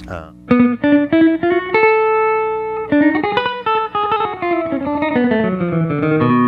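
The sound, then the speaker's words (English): An electric guitar played through a Bell Epic slapback delay pedal picks out a quick, fairly loud melodic run of single notes, climbing and then stepping back down, with no one talking. “I have this Bell Epic, which is like a slapback sort of thing.”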